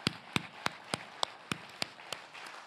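audience applause

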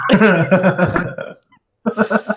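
burp

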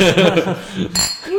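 glasses clinking

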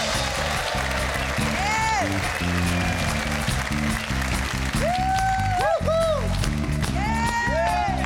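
audience applause

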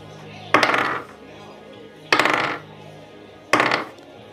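many dice rolling

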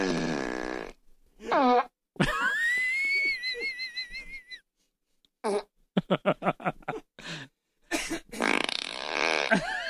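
flatulence

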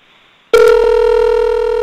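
outgoing phone call ringing

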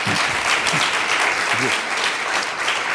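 warm round of applause

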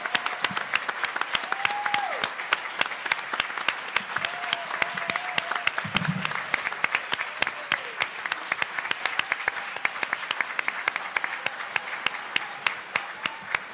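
audience applause

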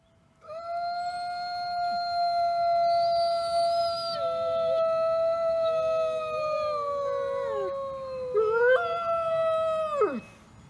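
wolves howling

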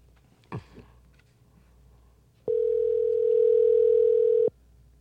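phone call ringing tone

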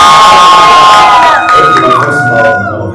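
audience shouting and cheering

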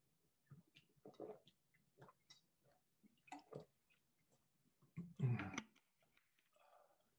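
water being poured

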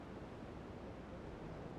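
waves

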